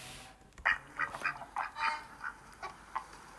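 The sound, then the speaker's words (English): A duck quacks repeatedly in a quick, uneven series of about nine or ten clear, nasal calls, with no voices and only faint background noise. “It's a duck.”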